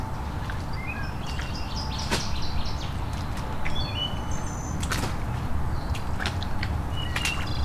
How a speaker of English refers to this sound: We got a wood thrush.